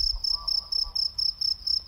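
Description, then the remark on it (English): Crickets chirp in a steady, rapid pulsing rhythm, a thin high trill repeating about every quarter second, with a faint low rumble underneath and no voices. “Listen to the crickets.”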